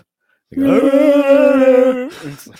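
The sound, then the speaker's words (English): A puppy lets out a single drawn-out, Chewbacca-like groaning howl, steady and mid-pitched with a slight rise, lasting about a second and a half before a brief rough trailing grunt. “And really, I don't know, he's very vocal. And not like barking. It's like Sometimes he sounds like Chewbacca.”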